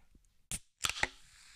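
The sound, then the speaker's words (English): A can of Coca-Cola is cracked open: a sharp metallic click, then a quick double pop of the tab, followed by a soft hissing fizz that fades away. No one speaks. “So I've gone for a Coca-Cola to complement this really like aggressively plain sandwich. Do you want to open it in front of the...”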